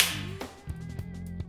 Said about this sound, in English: and he never tears up before the fourth slap.